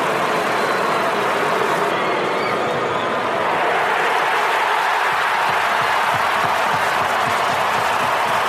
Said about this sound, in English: The crowd has gone absolutely wild. And, like, people in the stands bawling their eyes out, teammates with tear in their eyes.